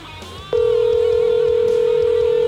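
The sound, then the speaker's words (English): A phone line's ringback tone on an outgoing call: one long, steady, loud electronic burst starts about half a second in and holds to the end over a faint background murmur. “Love it's ringing.”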